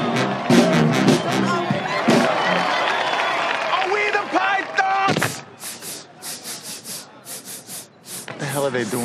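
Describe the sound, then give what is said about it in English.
A step team stomps in a tight rhythm while a crowd claps and cheers, building into a run of loud, sharp, evenly spaced percussive hits over lingering voices. “They're stomping the yard.”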